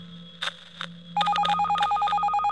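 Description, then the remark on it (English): A cell phone rings with a call from a missing man's phone, a bright, rapidly alternating electronic trill that starts abruptly after a couple of soft clicks and continues steadily over a low background hum. “Oh, it's Charles! Charles is calling!”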